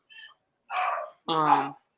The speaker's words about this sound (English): Can you hear my dogs in the back?